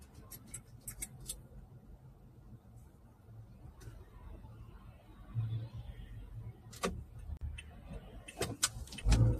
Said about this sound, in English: Ah, but this traffic is so intense right now. I don't think I'm going to be able to pull out and do that.